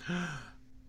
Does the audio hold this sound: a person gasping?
yes